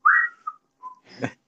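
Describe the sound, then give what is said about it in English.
A person whistles an imitation of a phone's doorbell-camera alert: a bright sliding tone, then two quick higher and lower notes, followed by a brief breathy burst and the start of another whistle. “kind of noises, you know, from the phone. You're like, oh, someone's at the door.”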